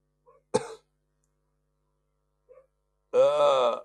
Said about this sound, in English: No, this is getting really bad. I can feel it. My cough's coming along.